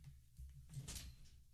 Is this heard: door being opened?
yes